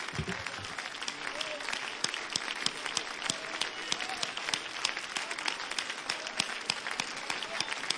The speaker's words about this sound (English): you clap your hands unto the Lord? Give him that great praise here tonight.